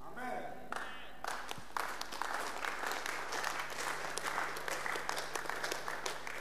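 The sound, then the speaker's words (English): A group of women clapping, starting with a few scattered claps and gradually building into steady, dense applause that continues throughout. “You see the women are clapping and their clapping is coming gradually.”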